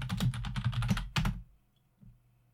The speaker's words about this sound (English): You're about to hear some key clacking.